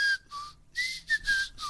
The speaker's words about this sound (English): All right, here, you whistle, and I'll sing.